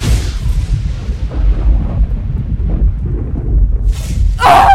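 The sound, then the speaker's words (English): A heavy, rolling low rumble like thunder fills the scene, then a sharp, loud, crackling burst erupts near the end as a lightning bolt strikes a bullet in flight and explodes it. “A lightning bolt struck the bullet in flight, exploding it inches away from Eva's face.”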